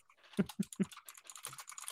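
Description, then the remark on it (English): Rapid, irregular clatter of someone typing on a computer keyboard, with a few heavier key thumps early on followed by a quick run of lighter clicks. No one speaks. “Typing an essay, like your description of the synopsis.”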